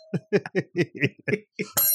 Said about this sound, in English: And he bought me this bell because he said, every time I close a sale, I should hit the bell. Sold.